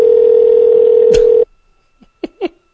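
A loud, steady ringing tone of an outgoing phone call drones for about a second and a half, then cuts off with a click as the line connects, followed by silence and two brief sounds on the line.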